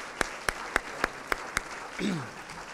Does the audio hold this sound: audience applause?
yes